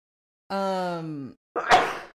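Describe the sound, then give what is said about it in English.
A single sneeze: a drawn-out, voiced "ahh" with slowly falling pitch, a brief pause, then a sharp, noisy, explosive burst that trails off quickly. “Tis the sneezing.”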